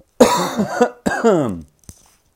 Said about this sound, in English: Sorry about my voice. I'm still in recovery mode, but so you might hear a couple coughs, but I'll try to keep it clean.